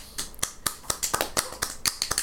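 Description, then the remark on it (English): A quick series of about ten sharp, crisp hand claps in a slightly uneven rhythm, bright and snappy, with no voices. “Clap.”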